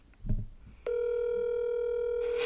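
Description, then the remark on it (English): A few soft clicks and handling noises, then the steady electronic ringing tone of an outgoing phone call to a friend comes in and holds unbroken to the end, fairly loud, with a faint hiss rising late. “If it wasn't ringing, it definitely would. It sounds like lava. He never answers the phone.”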